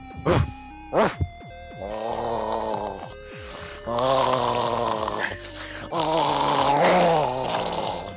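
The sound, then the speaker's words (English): A person imitates their male dog growling, as the dog does when trying to get off the bed: two short sharp yelps, then three long, rough, rumbling growls with pauses between them, fairly loud and with no other talking. “Can you do a dog? I can actually.”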